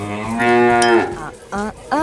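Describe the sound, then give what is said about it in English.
A cow moos loudly in one long, drawn-out bellow, followed by two short grunting moos in quick succession. “And now a cow gets a lap dance at a classy strip club when a bouncer notices he doesn't have any shoes on.”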